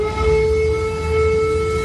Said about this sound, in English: Within the last 2 hours, in the eastern Ukrainian city of Donetsk, air raid sirens were activated.